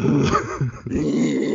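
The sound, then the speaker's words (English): A person imitates a dog's growl, a rough, sustained throaty rumble with a short break in the middle, fairly loud, with no other talking. “Like, I would growl and shudder a lot, and then I would take my pants off and run around.”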